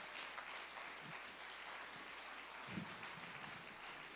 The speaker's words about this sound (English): If you believe that, can you give the Lord a hand clap of praise in this house?